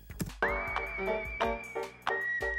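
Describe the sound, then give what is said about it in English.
A clear whistled tone slides up and holds a long, steady note over a music track with thumping percussive hits, then a second held note begins near the end. No one speaks. “Yo, just imagine like whistling down a desert or some shit.”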